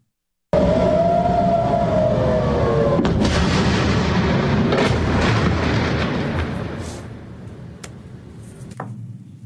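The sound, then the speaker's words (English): A wailing air raid siren in Tel Aviv, Israel, rises and falls at the start as rockets are intercepted over the city during the war with Hamas, then fades into a loud, rumbling roar punctuated by several sharp booms before things quiet down. “Robert, you heard those sirens earlier.”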